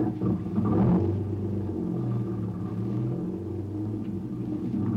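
A car engine rumbles low, swelling in a brief burst before settling into a steady hum that shifts in pitch as the vehicle pulls away. No one speaks.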